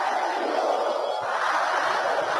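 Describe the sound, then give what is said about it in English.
During a Christian prayer session, an audience roars like thunder and shouts together in a dense, continuous wall of voices that stays loud and steady for the whole stretch, with no single voice standing out. “Can I hear you roaring like thunder?”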